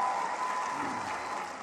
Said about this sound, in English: give my daughter a round of applause.